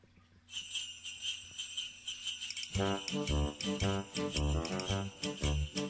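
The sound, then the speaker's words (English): An Italian Christmas song about a donkey opens with bright, steady jingling bells, then a bouncy bass and accordion-like instrumental beat kicks in beneath the jingling, loud and upbeat with no voices. “This is an actual Christmas song.”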